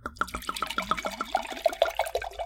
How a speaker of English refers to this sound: Just pour your wine. Okay, let's see what this looks like.